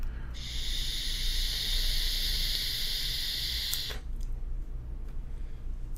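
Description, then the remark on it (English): A steady hiss of a vape coil, a 1.2 ohm coil head set to 24 watts giving 5.5 volts and fitted with a Dot Mod drip tip, firing during an inhale runs for about three and a half seconds, then cuts off abruptly, leaving a low background rumble. “All right, I got this 1.2 ohm coil head at a whopping 24 watts. It's giving me 5.5 volts.”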